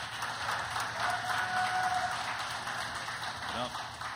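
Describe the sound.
Steady audience applause fills the whole stretch, a dense crackle of many hands clapping at an even loudness, with a few voices mixed into the noise.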